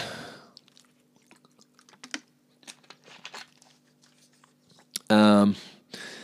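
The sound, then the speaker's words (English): Quiet mouth sounds: small wet clicks and sips scattered over several seconds, then a short loud voiced exhale, like a refreshed sigh after drinking water from a glass. “excuse me while I have a quick drink of water.”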